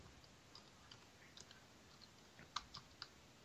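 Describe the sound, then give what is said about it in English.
Soft, irregular clicking of keys on a computer keyboard as someone types an answer to a question, a scattering of light taps that grows into a few sharper keystrokes toward the end, with no voices. “So somebody's typing.”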